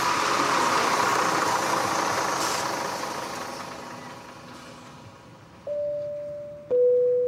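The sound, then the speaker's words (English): A large fuel truck's engine idles at an airport in wet weather, a broad rumbling drone that slowly fades, then gives way to a steady, higher mechanical hum near the end. No one speaks. “That's the third fuel truck now.”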